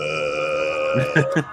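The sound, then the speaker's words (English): A steady electronic tone drones throughout, then three short, gruff burping noises follow in quick succession near the end, the middle one loudest. “Stop boiping.”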